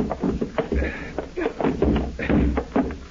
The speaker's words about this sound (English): help me push the desk against the door.